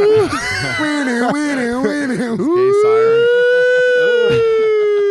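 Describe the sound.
A man loudly imitates a siren with his voice, warbling up and down before sweeping upward into a long, sustained wail.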